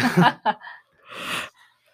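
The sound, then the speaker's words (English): A person yawns: a quick voiced catch of breath, then a long, airy, drawn-out exhale that fades away. No one speaks. “Gotta stop yawning over there.”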